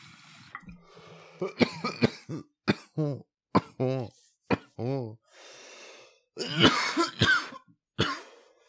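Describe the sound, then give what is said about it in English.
A run of abrupt, gulping hiccups, roughly a dozen at uneven intervals, some with a short voiced squeak, followed by louder breathy, rasping bursts near the end. “Trying not to give myself the hiccups. God damn it. And I have the hiccups.”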